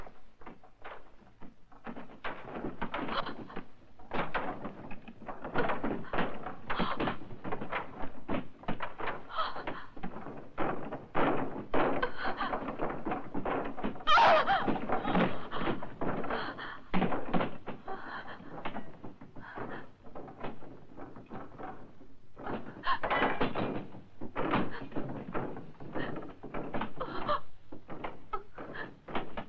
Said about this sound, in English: They're right outside. They're trying to knock down the door. I don't know how long it'll hold up.